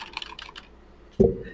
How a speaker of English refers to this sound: It's blinking. Typing can be heard. Yes. Someone types yes.